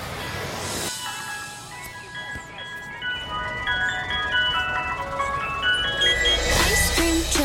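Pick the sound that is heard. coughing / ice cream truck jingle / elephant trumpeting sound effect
ice cream truck jingle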